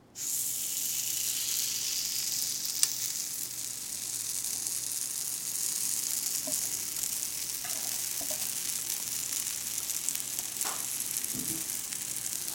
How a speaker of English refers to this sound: So we dropping that waffle mix, that chocolate waffle mix. We putting it right into the waffle iron. You hear the sizzle.